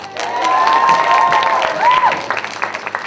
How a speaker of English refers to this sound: Oh, Luffy now. So clap for her.